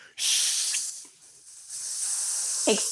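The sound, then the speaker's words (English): During a coffee-shop role play, a voice imitates a barista's milk steamer steaming milk with a sustained, breathy hiss that fades briefly and then surges back strong, with a short huffing sound near the end. No other talk. “Steaming some milk.”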